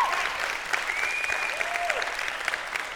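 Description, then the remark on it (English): An audience applauds steadily for the fact that God is building his church, a dense wash of many hands clapping at even loudness throughout, with a few faint whistles rising above the noise. “for me, it's the fact that we're applauding the fact that God is building his church and she has a central place in his plan for the earth.”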